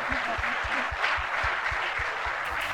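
An audience rises to its feet and applauds an honoured guest, dense overlapping claps forming a sustained, loud wash of noise with a low rhythmic thump beneath it, no voices standing out.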